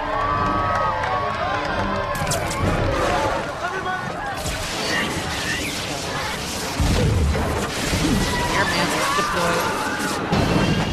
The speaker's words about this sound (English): Now, can we get a big cheer for diversity?